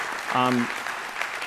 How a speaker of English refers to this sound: Can you guys just give them a round of applause and welcome them here to Plum Creek? We're glad you guys are here.